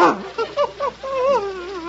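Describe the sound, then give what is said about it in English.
An Airedale terrier named Adolph gives a few short, yelping barks, then a long, wavering whimper that rises and falls. The sounds are fairly loud, with no talking. “Here he is, Mr. Montague. The Airedale that's going to work with you.”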